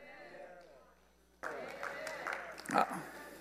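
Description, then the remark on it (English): Halfway through a sermon, the audience breaks into a sudden burst of clapping, a dense noisy patter that swells toward the end while the preacher keeps talking over it. “You don't need to clap, it's God's word.”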